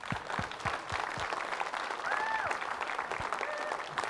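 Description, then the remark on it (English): An audience applauds steadily, many hands clapping in a dense, continuous patter at an even level, with a few brief whistle-like tones and faint voices mixed into the crowd noise. “So why don't we give them one more hand clap?”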